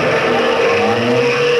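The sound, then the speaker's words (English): A car engine roars loudly and steadily, its pitch shifting as it races off, with a hint of tire squeal mixed into the noise. “Into the car, everybody.”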